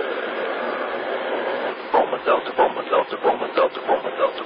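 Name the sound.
train sound effect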